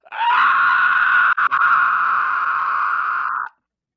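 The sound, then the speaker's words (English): A pterodactyl, hit by a fired flare, lets out a long, piercing scream, loud and holding steady for about three seconds with a brief stutter midway before it cuts off abruptly. “There's a scream as that you look up and the sky lights and he hit one of the pterodactyls with it.”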